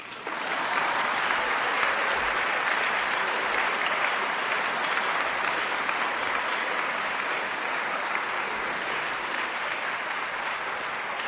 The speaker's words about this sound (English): This is definitely going to be a memorable evening because we have Pulitzer Prize winning author and Baltimore resident and great friend of the Pratt Library, Mr. Taylor Branch. It says here, applause.